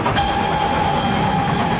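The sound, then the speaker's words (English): A steam train rolls steadily along the rails, a continuous loud rumble with a faint whining tone running through it, unbroken, with no voices. “But against the shocking modernity of that, where there are steam trains.”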